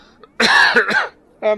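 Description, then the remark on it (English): A loud cough in a couple of harsh bursts, followed by a short throat-clearing sound after a brief pause. “I'm going to cough.”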